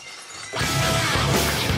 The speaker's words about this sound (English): When is the glass going to break